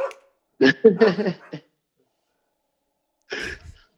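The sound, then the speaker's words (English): Guard dogs bark at a cat in a quick cluster of four or five sharp yaps, then one more bark after a short pause. The barks are fairly loud, with no talking. “the vicious guard dogs are on the cat, huh?”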